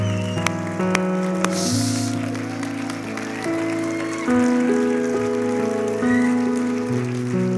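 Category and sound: crowd, audience applauding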